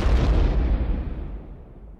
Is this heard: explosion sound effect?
yes